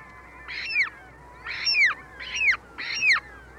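Four harsh, grating calls of an ivory gull, an Arctic gull of the pack ice, each with a downward-slurring tail, repeat at a steady pace with short gaps between them, loud over a low background hiss.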